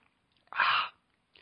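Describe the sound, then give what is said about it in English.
A single short, breathy slurp of someone sipping Landshark Lager, a 4.6% ABV lager from Margaritaville Brewing, from a glass bottle, lasting under half a second with quiet around it and no talking. “I'm actually drinking my Landshark Lager out of a bottle.”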